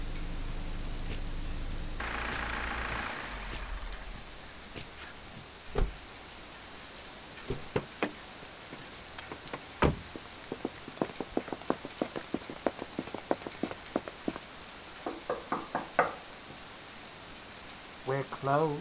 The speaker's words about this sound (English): We just need a place to get out of the rain for an hour or so. It's too dangerous to drive.